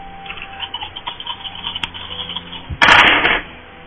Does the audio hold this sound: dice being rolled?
yes